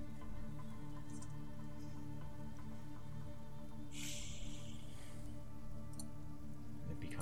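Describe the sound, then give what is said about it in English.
Light drizzle starts to fall under a cloudy sky and patters steadily throughout, a soft continuous hiss of fine raindrops with a brief brighter splash of sound midway, over a low, constant background rumble. “And a small light drizzle starts to kind of fall over this, and you can hear cracks of thunder in the distance.”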